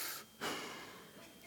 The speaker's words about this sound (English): Sometimes slow breath, sometimes big breath. But man, I'm pretty good at breathing. I've mastered breathing.